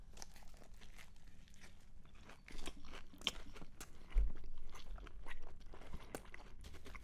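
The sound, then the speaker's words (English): Repeated moist chewing and crunching as someone bites into a Beast Burger, a steady rhythm of soft, squelchy mastication with a few sharper crunches, no talking over it. “All right. One big bite. I need to get a pickle in this.”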